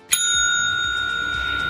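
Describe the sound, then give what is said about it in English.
A single bright ring of a bicycle bell struck once, its high metallic tone sustaining and slowly fading over almost two seconds, with no talking. “So I'm going to give it a toot.”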